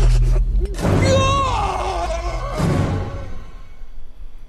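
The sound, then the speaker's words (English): A campy, overacted movie scream: a loud, wavering, drawn-out cry that bends in pitch, followed by a shorter vocal burst, over a low rumbling soundtrack. “Master of the bad scream.”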